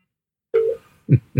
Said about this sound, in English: Oh, hang on. My phone's ringing. It's you.